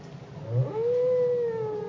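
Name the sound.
whale song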